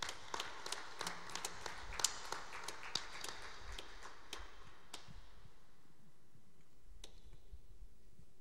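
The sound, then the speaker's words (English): A church audience applauds its guests, a burst of many hands clapping at once that thins out over the first few seconds, leaving a few scattered, isolated claps. “Can we get a round of applause for our guests today?”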